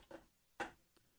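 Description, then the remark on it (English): A door swings and closes behind a woman with a solid thud, followed by a faint click as it latches shut. There is no talking. “There she goes. The door is closing. And it is shut.”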